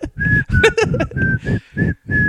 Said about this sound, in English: I said, yeah, you know what? I'm going to whistle. It was the same effect.